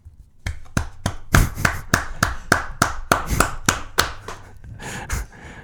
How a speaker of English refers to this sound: That was a round of applause.